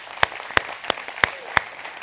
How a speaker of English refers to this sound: Team, we're excited. Yeah, let's give them a round of applause.